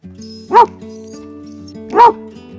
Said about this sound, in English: Our own hens supplying fresh eggs every day, and no farm would be complete without a farm dog roaming around. So meet my pride and joy, Socks.